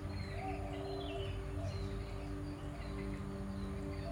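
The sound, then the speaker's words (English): Jungle birds chirp and call in scattered bursts over a steady, dense ambient hum, fairly soft throughout, with no voices. “You simply keep listening and observe. And in the same time, maybe you can visualize the jungle into your mind.”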